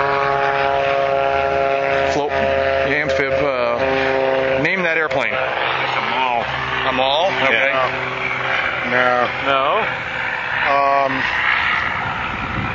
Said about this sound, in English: So airplanes are kind of still doing that thing. But there are airplanes coming and going. There's an amphib.